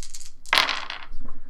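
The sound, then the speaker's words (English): Several dice clatter onto a hard table in one sharp burst, then rattle and tumble briefly before settling, fairly loud, with a few faint clicks just before. “All these dice are going to flip a coin.”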